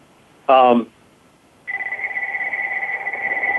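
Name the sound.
phone ringing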